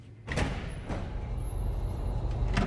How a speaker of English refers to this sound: Right outside this secure door. Let's go inside.